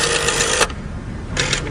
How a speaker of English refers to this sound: That's a rotary phone. Didn't you have a rotary phone where you had that's to, like, a rotary phone sound? Spin the dial, let it go.